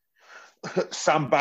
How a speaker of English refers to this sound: That cough's come back.